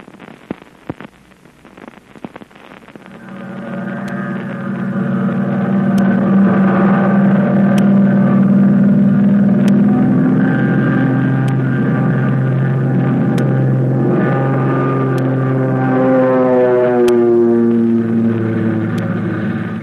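An American plane's engine, with Flip Corkin at the controls, sputters briefly, then swells into a loud, steady droning roar with a slightly wavering pitch as it streaks through the sky toward Yokohama, heard alone without any voices.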